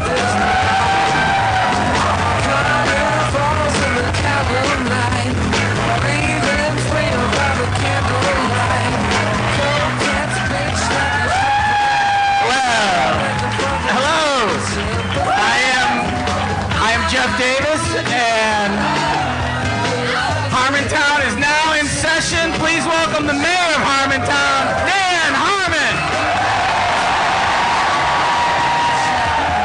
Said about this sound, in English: Based on the applause.